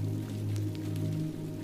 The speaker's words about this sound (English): You put on your coat and gather your umbrella and step out into the rainy night. The rain falls lightly.